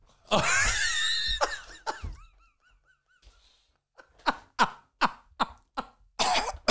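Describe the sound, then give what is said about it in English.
A sharp sniff of a powder through the nose, then a burst of harsh, repeated coughing: a rapid run of short, loud hacks spaced about half a second apart, with no talking. “It's like baking soda up your nose.”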